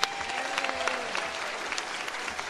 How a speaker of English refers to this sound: Let's give them a hand. Thank you so much.